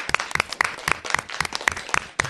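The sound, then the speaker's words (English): A huge round of applause for a presentation, of steady, evenly paced claps, each sharp and bright, repeating about four times a second at a moderate level with no voices over it. “But I want to just give you a huge round of applause.”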